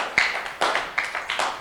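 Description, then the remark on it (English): An audience claps hands together for Jesus at the end of a sermon, a dense wash of overlapping claps with a few sharper bursts rising out of it every fraction of a second. No one speaks. “Clap your hands together for Jesus and stand to your feet.”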